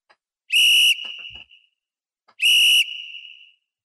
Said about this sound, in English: I mean, Joe, you got the whistle.